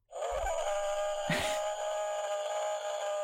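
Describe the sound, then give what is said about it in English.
A long, unbroken howl in a forest holds a steady, fairly high pitch for over three seconds, rich with overtones, with two dull low thumps and a brief rough burst early on. “It's a really long howl.”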